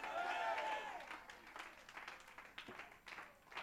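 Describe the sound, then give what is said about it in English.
A church audience claps and shouts together at the pastor's call to clap and shout "we gotta pray", a dense wash of applause with raised voices calling out, loud at first and then settling into scattered claps and cheers. “Somebody clap your hands and somebody shout, we gotta pray.”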